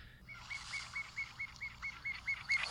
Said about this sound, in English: Anything else about the piping plover? We could play what they sound like